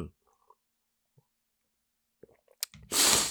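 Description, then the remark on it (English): A quiet sip of coffee from a John Wayne is Dead mug: faint lip and swallow clicks, a brief slurp, then a loud breathy exhale at the end. No one speaks. “So, now, let me get a little sip of this coffee here and this, oh, this wonderful John Wayne is Dead mug.”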